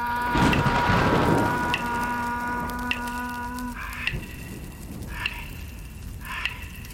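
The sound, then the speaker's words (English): A thunderstorm with steady rain hissing throughout and a low rumble swelling near the start, while a sustained tonal drone and regular bright ticks sound over the downpour. No one speaks. “Mother Earth uses lightning from cloud to ground to charge up the minerals, but also to start fires.”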